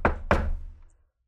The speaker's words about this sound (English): So anyway, he knocks on the door.